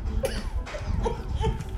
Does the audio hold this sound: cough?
yes